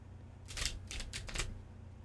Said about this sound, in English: Okay, so this is going to be five cards. I'm still shuffling, but I'm going to explain. So this is gonna be 5-card spread.